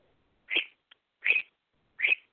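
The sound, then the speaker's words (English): Three bright, evenly spaced chirps from Pretty Bird, a pet bird, ring out alone against silence, each short and fairly loud, with a faint tiny peep between the first two. “We got a pretty bird there.”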